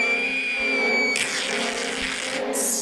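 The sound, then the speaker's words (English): A 'split scream' sound effect of someone being split right open down the middle: a loud, steady, high-pitched wail for about a second, then a harsh, noisy screech that runs on before cutting off sharply. Nobody talks. “Split scream. Oh, we haven't had one of those in a while.”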